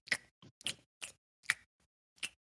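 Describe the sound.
Mouth chewing noises: six or so short, wet, clicky bursts at an uneven pace over about two seconds, fairly quiet, with no talking.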